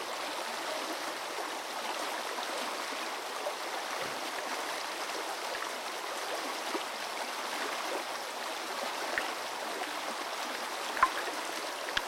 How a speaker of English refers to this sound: You can hear the sound of minnows feeding and the calls of caddisfly larvae, who signal to each other to define their territories.